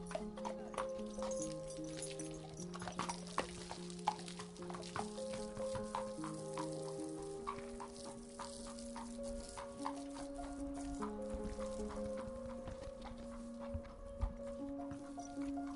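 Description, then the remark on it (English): Horses' hooves clip-clop in a steady rhythm of repeated clops on the beach at Laytown, where horses are brought to race, carried over a continuous backdrop of sustained, shifting musical tones. “I train horses in England, and we brought 7 horses here to Laytown today to run on the beach.”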